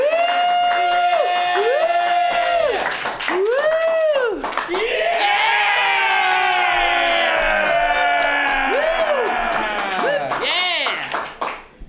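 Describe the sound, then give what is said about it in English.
A crowd cheers loudly and steadily, with rising and falling whoops, yells and shouts layered over dense clapping, sustained without a break throughout. “We got cheering for 10 minutes.”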